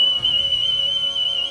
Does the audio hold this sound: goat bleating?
no